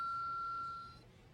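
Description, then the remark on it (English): A single bell ding rings out with a clear, steady high tone and a bright overtone, sustaining for about a second before cutting off, with no voices over it. “Ooh, I just, did I ring the bell too easy?”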